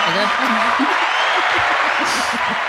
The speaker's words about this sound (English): Oh, congratulations. Wait, I'll find some applause.